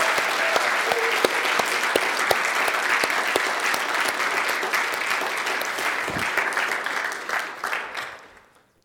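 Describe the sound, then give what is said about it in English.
An audience applauds steadily with dense, sustained clapping and a few scattered cheers and whoops early on, holding loud for about seven seconds before tapering off into silence. “Together, one more time, let's cheer everything we are.”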